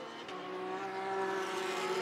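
Porsche race car engines in a 2023 Porsche Carrera Cup North America race at Indianapolis howl at high revs in a steady, buzzing drone that swells slightly louder over two seconds, with no voices present.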